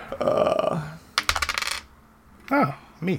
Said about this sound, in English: Oh, the return of the die. All right. You were rolling some dice.